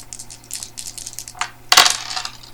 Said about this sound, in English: We roll the body dice. Is 5.